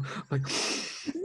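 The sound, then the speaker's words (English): A voice imitates heavy breathing: a loud, breathy exhale, with a brief voiced grunt before it and a short rising vocal sound at the end. “I just breathe hard.”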